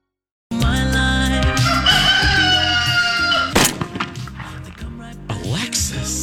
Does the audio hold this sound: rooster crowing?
yes